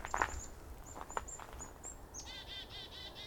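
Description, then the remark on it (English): A chickadee calls outdoors: thin high whistled notes followed by a run of buzzy, rapid 'dee' notes over a soft background hush, with no voices. “You hear a chickadee, you'll probably find a flock of birds.”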